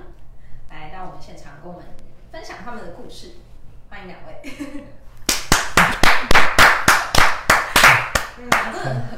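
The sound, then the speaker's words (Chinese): Someone talks for a few seconds, then a short burst of applause follows: about a dozen sharp, loud hand claps in a fairly steady rhythm, lasting roughly four seconds. “自带掌声。”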